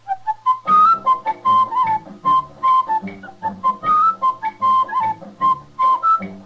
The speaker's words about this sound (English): That whistling man, …, really started something. Tonight, … join in.